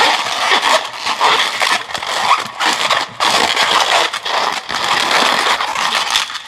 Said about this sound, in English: Mine has a little nubby tail. Mine has a huge tail. You made wiener dogs. Look it. I'm so happy. That's my very first balloon animal I've ever made.